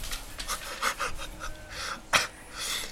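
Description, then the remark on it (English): German Shepherd dogs panting after fetching a ball, a quick, steady rhythm of breathy huffs with a few sharper gasps, moderately loud and with no talking. “Anyway, these are German Shepherds.”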